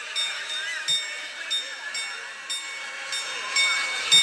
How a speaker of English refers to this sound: The astronomical clock of Prague has interrupted you, which was made in 1410. Very ancient clock there. And it's got one of these kind of little mechanised people, and they all look quite unpleasant and spiteful.